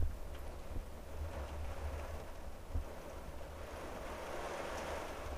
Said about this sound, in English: And the rain is just pouring, dude. It's just insane now. Like, can you hear this?